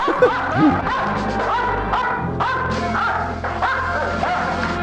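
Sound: dogs barking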